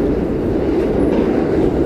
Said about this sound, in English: And I'm so sorry, I didn't realize that the train was going to come by.